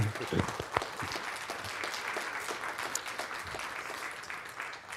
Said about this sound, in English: So I just want to tell you guys, we have an amazing pastor. Let's give him a clap.